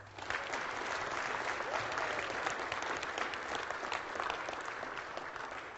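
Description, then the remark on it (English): An audience at a church service breaks into steady applause for the families after a child dedication, dense overlapping claps sustained at an even level for several seconds with no talking over it. “Let's give everybody one more round of applause.”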